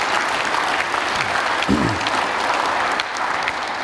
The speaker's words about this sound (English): If you were a volunteer, can you applaud these people? They worked really, really, really, really hard.